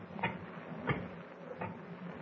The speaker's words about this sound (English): I hear footsteps. Yeah, you're right.